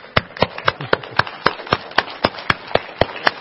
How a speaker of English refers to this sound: I'm just going to clap about that one.